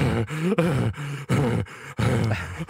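Heavy, rhythmic breathing of a video game character from a 2012 game, with a groaning, voiced edge. About six loud breaths come in quick succession, each separated by a brief pause, with no speech. It is heard when the game's music is turned all the way down.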